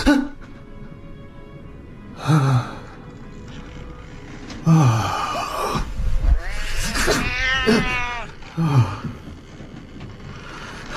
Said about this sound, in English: You in here again? Are you? Damn cat.